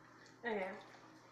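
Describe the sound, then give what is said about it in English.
A person takes a drink: one short gulp with a voiced, tonal edge lasting about half a second, standing out against a quiet, faint background hiss. “Sorry to drink something.”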